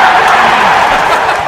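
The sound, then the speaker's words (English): Hockey fans in the crowd in Buffalo roar and cheer after the Coyotes score, a loud, sustained wall of sound with no goal horn or music, just a steady mass of voices for the whole moment. “I found a clip of the fans after that goal that you're talking about”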